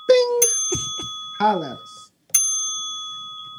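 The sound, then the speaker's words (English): A bright notification-style bell dings twice, clear, with a brief burst of voices between the chimes; the second ding rings out and lingers as it slowly fades. “If you are watching this for the first time and you haven't subscribed, press the little button down there, turn the little bell on.”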